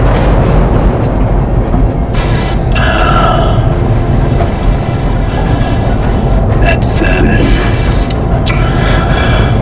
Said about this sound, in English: That's a supply tram.